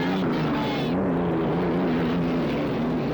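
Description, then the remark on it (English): Loud, steady engine roar from racing boats coming down the back stretch past the Detroit Yacht Club about 40 seconds before the start gun, a broad droning rumble with low harmonic tones that waver slightly in pitch, filling the whole stretch without a break. “The three of the boats are on the back stretch now.”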